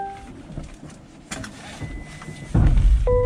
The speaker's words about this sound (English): So the frunk just opened for you automatically. Yeah, yeah, yeah. Just there's a button and the frunk opens.